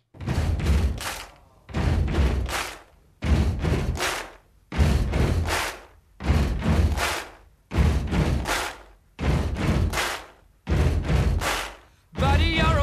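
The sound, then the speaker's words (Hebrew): Rock band members and everyone in the building stomp twice and clap once, banging hands and feet on drum risers while recording, in a steady, repeating pattern of about eight cycles of loud, booming thuds and a sharp clap, with no voices. “הם ישבו על כיסאות פסנתר, והם דפקו עם הידיים והרגליים על מתקני ההגבהה לתופים, וכשהם סיימו להקליט את עצמם, הם הזמינו את כל מי שהיה בבניין, וכולם הצטרפו ודפקו על המתקנים.”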